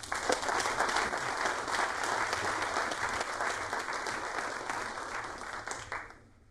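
Steady audience applause welcoming Brian Keating, Associate Director of the Arthur C. Clarke Center for Human Imagination: a dense wash of many hands clapping at an even level for about six seconds before tapering off quickly at the end. No one speaks over it.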